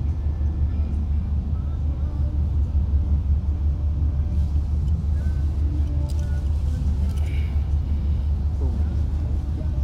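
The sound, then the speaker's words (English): An old car without power steering rumbles steadily while driving, a deep, continuous low drone heard from inside the vehicle, with faint voices and light road noise mixed in. “It's hard to steer. No power steering.”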